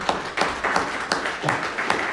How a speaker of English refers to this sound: I think what our pastor just did deserves a round of applause.